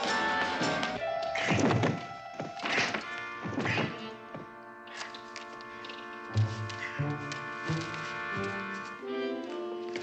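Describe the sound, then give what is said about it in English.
Several heavy, dull thuds pound in uneven blows against a solid oak dungeon door during the first few seconds, with sustained orchestral-style music playing underneath throughout. “Just as I suspected, the dungeon door is made of solid oak. I can't break through it.”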